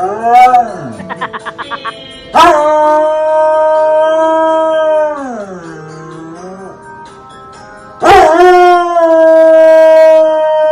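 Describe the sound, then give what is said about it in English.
A dog howls in long, wavering tones that rise and slide downward, loud, singing along to a TV show's theme music, whose few sharp musical stabs punctuate the howling. “Have you seen the dogs singing along to Law & Order?”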